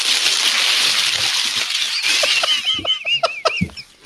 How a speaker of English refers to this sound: Oh, he put like the really big bubble wrap in there.